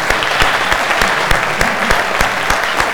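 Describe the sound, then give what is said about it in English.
A crowd claps steadily for graduates, a dense wash of overlapping handclaps with sharp individual slaps standing out, sustained at an even, fairly loud level throughout. “Yes, one more big round of applause for our graduates.”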